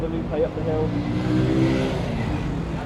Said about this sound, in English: Oops, and there's a pink and white bus careering towards us as we walk down the middle of the street. The number six bus, okay.